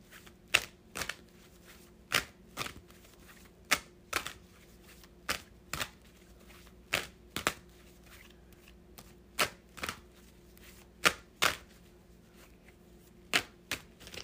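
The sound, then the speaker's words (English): A deck of cards being shuffled, heard as a long run of crisp, papery snaps and flicks at an uneven pace over a faint steady hum, with no one talking. “I'll be having to get all in there when I shuffle them cards.”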